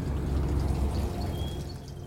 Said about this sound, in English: I guess if it gets real bad, there's like a big water pipe near me. You can hear the water. That the bottom is rusted out, so I could actually go hide under that if I had to, if it really starts to rain.